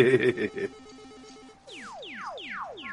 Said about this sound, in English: Right, I'll be back. 8-bit sound effect, guys.